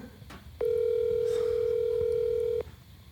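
A single ringback tone on a phone line: one steady, mid-pitched electronic beep lasting about two seconds, loud over a faint background hiss, with no one answering.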